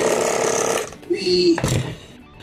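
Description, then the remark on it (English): A fairly loud mechanical buzzing from a vibrating device a man is using on himself drones for about a second, then shifts into a higher, steadier whine before a brief rough rattle. A voice is mixed in with the noise. “is using some sort of vibrating device on himself.”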